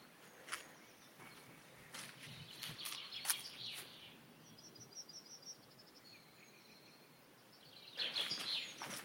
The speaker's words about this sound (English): It's beautiful to have so much bird life around here. Not in the open air, not in the open areas, but on the edge of these woods, it's fantastic.